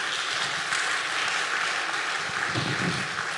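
A crowd claps steadily, the applause dense and sustained at an even loudness throughout, with no voices rising above it.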